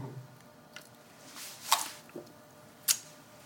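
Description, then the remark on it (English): Quiet slurping and wet mouth sounds as someone sips water, with a couple of sharper sips standing out against a soft background and no talking. “and get ready, I'm gonna take a sip of water here.”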